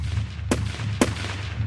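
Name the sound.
three gunshots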